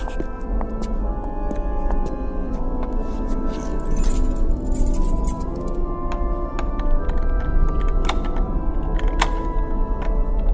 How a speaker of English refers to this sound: Eventually we came upon a large wooden door. I stepped up to it and pulled out an old brass key.